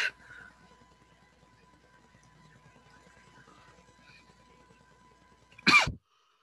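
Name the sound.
a little cough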